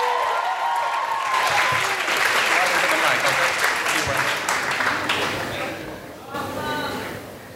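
An audience bursts into loud, sustained applause for a freshman student about to perform a poem, dense clapping mixed with a few cheers, holding steady for several seconds before gradually thinning out and fading toward the end.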